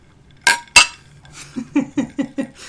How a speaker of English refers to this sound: Happy birthday. Clink. Cheers.